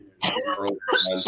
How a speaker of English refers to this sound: Yeah, and I was coughing up for him. That was what that coughing was.